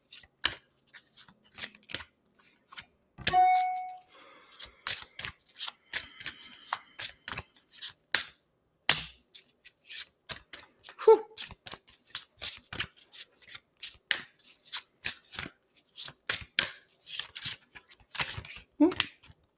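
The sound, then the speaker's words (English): A deck of cards is shuffled for about twenty seconds, with crisp, rapid riffles and snapping bursts in an uneven rhythm, with a brief murmur of voice near the start. “I'm going to finish shuffling and then I'll finish that thought.”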